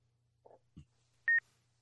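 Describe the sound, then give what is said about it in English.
A timer beeps: one loud, high-pitched electronic double chirp, after a couple of faint soft knocks over a low steady hum. “Well, I guess we'll just listen to this timer time us out here.”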